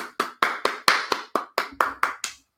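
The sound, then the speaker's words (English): Sparse applause from a small audience: about eleven crisp, separate claps in a steady, fairly quick rhythm, moderately loud, with no voices, ending after a couple of seconds. “Well, thank you for my audience for applauding at least.”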